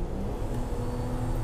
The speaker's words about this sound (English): Sorry, just busting around this fucking truck here.